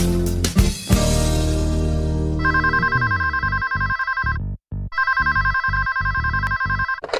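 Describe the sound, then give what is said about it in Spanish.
After a brief burst of music, a telephone rings on a call to a free helpline for pregnant women on the show Dar a Luz en Veracruz: two long spells of rapid, warbling electronic trills separated by a short pause. The ringing is loud and steady, with no talking. “Sí, está llamando a la línea de atención gratuita para mujeres embarazadas”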